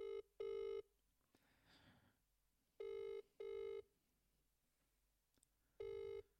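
A phone's outgoing ringback tone repeats in paired electronic bursts as a call is placed, each double ring followed by a pause, clear with faint room noise in between and no one speaking.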